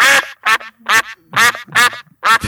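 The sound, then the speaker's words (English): A loud duck quack sound effect: a duck quacks six times in a quick, steady series, each call a harsh nasal burst, with no voices or other sounds around it. “That is a loud duck.”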